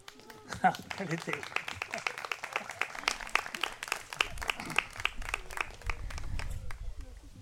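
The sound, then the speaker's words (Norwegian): An audience at a poetry reading applauds steadily for several seconds, a dense patter of many hands clapping together, with a low rumble and faint crowd voices mixed in toward the end. “Men hvis dere klapper, så leser jeg et til.”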